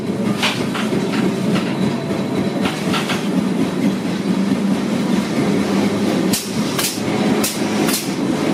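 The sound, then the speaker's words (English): An old wooden number 28 tram in central Lisbon rumbles and clanks along steel rails, with a steady low drone and repeated sharp metallic knocks and clacks, several coming in quick bursts near the end. “You will see it because you will hear it clanking along.”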